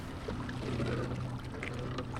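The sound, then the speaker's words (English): Steady wash of Mississippi River water around a moving Big Muddy Adventures canoe heading toward the St. Louis Riverfront's cobblestone shore, about half a mile north of the Gateway Arch, on a Friday afternoon. Soft splashes and trickles over a low rumbling hum, continuous for a couple of seconds. “navigating a canoe toward the St. Louis Riverfront's cobblestone shore”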